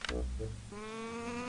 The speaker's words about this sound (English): They're like, yeah, these like big birds. Wait, the cockroach sound is just a bird? It sounds kind of like a sheep.